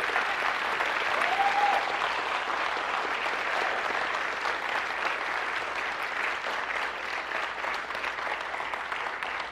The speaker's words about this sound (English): Yeah, give the Lord a hand clap one more time.